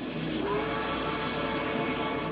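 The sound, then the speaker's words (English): A moving train rumbles and rattles steadily throughout, a dense continuous roar with faint tonal hints of a steam whistle layered in, evenly loud, with no one speaking. “The story starts on a train ride across the West.”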